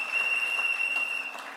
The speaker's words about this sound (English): A round of applause for all our contributors. Thank you so very much.